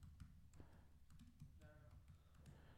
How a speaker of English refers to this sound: Typing.